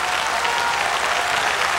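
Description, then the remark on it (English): An audience clapping hands in a dense, continuous wash of applause, steady and fairly loud throughout with no pauses or voices standing out. “Clap your hands again.”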